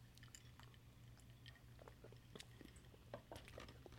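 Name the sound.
sipping a drink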